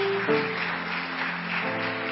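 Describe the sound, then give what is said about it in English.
A crowd claps steadily together for people coming forward from their seats, a dense wash of applause with a sustained musical tone humming underneath. “Keep clapping. Keep clapping.”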